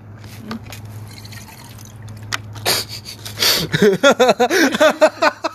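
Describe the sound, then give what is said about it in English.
Water pours into a cup, a few splashy bursts giving way to a rapid run of bubbly, gurgling glugs, over a low steady hum. “It doesn't need that much water.”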